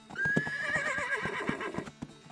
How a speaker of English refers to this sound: There was a two-horse carriage standing there. Then the horses drove off at a very fast pace.